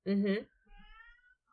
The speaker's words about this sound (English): My cat is having a meltdown.